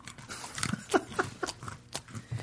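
Crunchy chewing of beer nuts, a quick run of sharp, brittle crunches in an uneven rhythm, with no talking over it.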